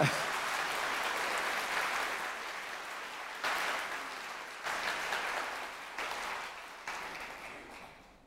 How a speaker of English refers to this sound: Now, I've asked a few friends of mine to come and help me to illustrate this point further. So, why don't we give them a round of applause as they come to the stage, actually.